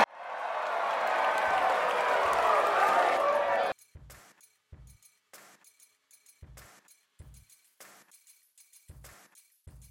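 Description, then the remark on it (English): A loud burst of crowd applause and cheering sound effect, played to welcome a guest onto a live stream, fills the first few seconds, then cuts off abruptly, leaving scattered short bursts of speech. “Ladies and gentlemen, where's my crowd?”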